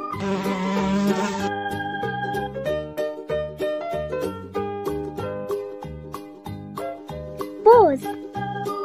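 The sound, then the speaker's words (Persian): A bee's buzzing drones for about a second and a half over a bouncy, cheerful children's tune about a golden bee that makes honey, then fades as the music carries on with a brief swooping note near the end. “زنبور طلایی، همیشه گرم کاری، میری به روی گلها شیره گل میاری، عسل میسازی کم کم با اون صدای وزوز، وقتی که نیش میزنی جوش میشه زودی قرمز.”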